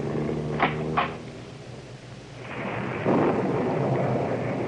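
Steady rain hisses throughout while deep thunder rumbles underneath, swelling louder in the second half, with a couple of sharp crackles early on. No voices.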